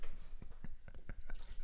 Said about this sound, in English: That was a very large pour. I was gonna say there's a bassy glug.